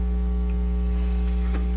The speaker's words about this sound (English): And he says the needle on the turntable, and the turntable's not running. And he puts the volume all the way to the top. And he's turned the highs down from the mixer, and it's making a feedback noise.